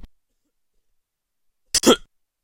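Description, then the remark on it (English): A single sharp cough from someone who is sick bursts out after a stretch of near silence, short and harsh with a quick double push of breath, then quiet again. “Sorry, back to this coughing sickness again.”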